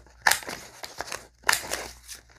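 Scissors cut through stiff paper in two crisp, sharp snips about a second apart, each trailed by dry crinkling and rustling; no one speaks.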